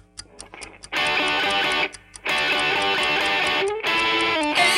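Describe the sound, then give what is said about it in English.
A countdown clock ticks in a quick, steady rhythm, starting alone with sharp clicks before a loud, dense, distorted music bed surges in underneath while the ticking keeps pace. No one speaks. “I am starting the clock.”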